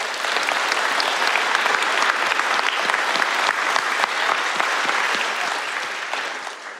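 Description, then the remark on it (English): A crowd claps steadily and loudly for several seconds for the graduating seniors, a dense wash of many hands with no voices, fading slightly toward the end. “And can we give a round of applause for the graduating seniors?”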